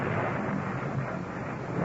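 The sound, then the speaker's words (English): A steady, roaring rumble of thunder from a wild electrical storm over the city of Rome rolls on without pause, dense and broad with a deep low end, holding an even loudness throughout and no voices. “That 15th of the month, the city of Rome is racked by a wild electrical storm.”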